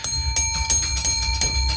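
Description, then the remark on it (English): A bell rings loudly in a rapid, steady series of metallic strikes, about three per second, with bright sustained overtones and no voices. “Phone boy broke the bell. I broke the bell.”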